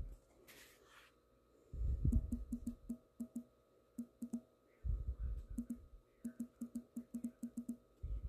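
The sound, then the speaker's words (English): Typing on a phone while looking something up: quick bursts of light, crisp taps in an uneven rhythm, with a few soft low thumps from handling in between. No one speaks. “I'm sorry if you hear my typing. Like I said, I'm on my phone. So I'm just typing it.”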